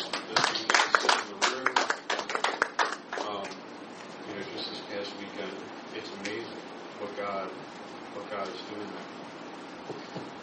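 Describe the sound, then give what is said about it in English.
A short burst of audience applause for people who got baptized, dense clapping for about three seconds before dying away, followed by quieter murmur and indistinct voices. “And can we just give a round of applause to the people that got baptized?”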